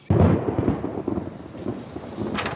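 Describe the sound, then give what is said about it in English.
A thunderstorm sound effect: a loud rumble of thunder bursts in and rolls on over steady, hissing rainfall, with a brighter splash of rain near the end. No one speaks. “Oh no! A storm is coming!”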